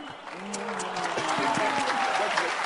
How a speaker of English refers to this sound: Clap your hands for good pastors like this lady.